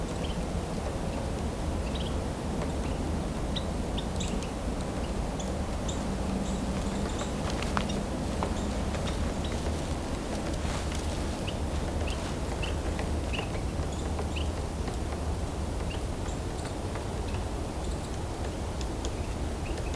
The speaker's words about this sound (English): Dark-eyed junco.